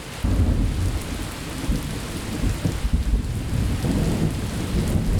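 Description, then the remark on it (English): Heavy rain of large, heavy drops pours steadily while deep thunder rolls and rumbles continuously underneath, a loud storm with no voices. “They had not gone far before the first ominous roll of heavy thunder could be heard.”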